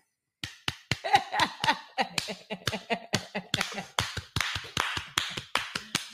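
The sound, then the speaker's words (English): A quick, uneven run of about twenty loud hand claps made into the microphone, each a sharp crack with a brief ring-out, starting after a moment of silence and continuing steadily to the end with no talking. “Clapping noise. Can you do it in the mic?”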